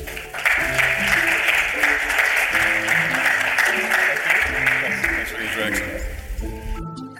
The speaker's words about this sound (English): So please, a big applause for Rob from Airbus.